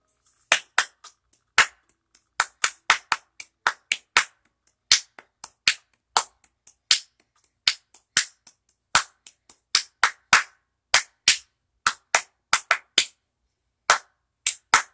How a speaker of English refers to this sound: I've been just clapping.